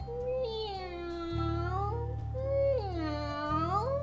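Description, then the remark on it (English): A voice imitates cats on a wall yowling with two long, wavering, caterwauling wails that slide up and down in pitch, loud, over a steady low hum. “Sang the cats on the wall.”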